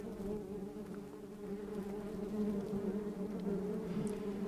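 A wasp buzzes steadily for several seconds, a continuous droning hum with a slightly wavering pitch and no other sounds or voices.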